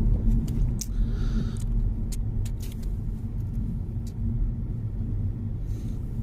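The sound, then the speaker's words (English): Steady, loud low-pitched road rumble fills the cabin of an electric car driving out of Norwich on the A47 on a foggy day with its lights on, a continuous droning hum with a few faint light clicks and ticks scattered over it, no one speaking. “Well, we're just clearing Norwich now, heading out on the A47.”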